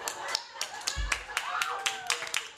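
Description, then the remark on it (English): A short burst of audience applause on a show, given for how a contestant makes toast: loose sharp claps repeating irregularly at a moderate level, with faint voices murmuring and a brief low thump partway through. “I think that might be the first time anyone on the show has gotten a round of applause for how they make toast.”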